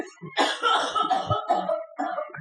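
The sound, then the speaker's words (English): A woman coughs repeatedly in the background, a run of harsh, fairly loud bursts that keep going for a couple of seconds with a brief pause near the end. “Does anyone hear her still coughing back there?”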